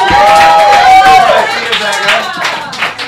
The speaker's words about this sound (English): And as you just come here, everyone will clap for you